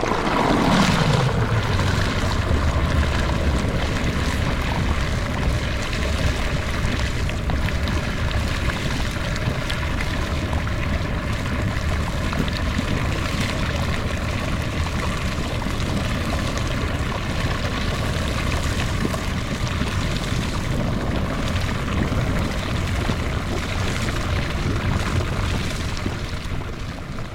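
geyser erupting

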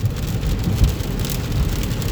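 rain

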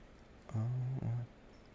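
cat vocalizing

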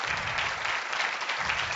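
group applause

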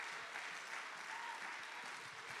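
audience clapping hands

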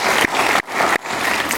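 audience applauding

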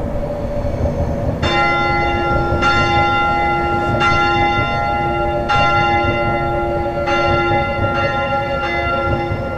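church bells ringing

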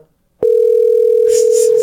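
telephone line ringing

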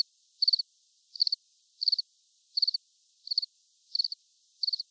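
crickets chirping sound effect

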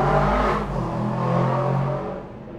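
loud car passing by

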